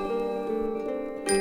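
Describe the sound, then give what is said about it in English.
Tubular bells ring out in a few struck notes, their bright metallic tones sustaining and overlapping, with a louder, brighter strike near the end. “Tubular bells”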